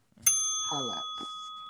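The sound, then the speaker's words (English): A single bright notification ding rings out sharply, its clear tone lingering and slowly fading while a voice briefly speaks over it. “Turn the notification bell on.”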